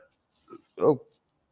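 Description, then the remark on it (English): A short, low, guttural burp, bringing up a little vomit, erupts after a brief soft vocal sound, thick and gurgling with a wet, throaty texture, heard alone. “That one was a chunky burp.”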